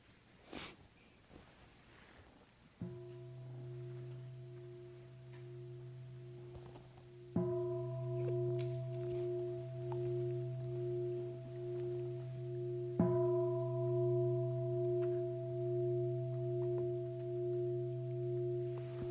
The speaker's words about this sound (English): So I'll invite Heather to ring the bell 3 times.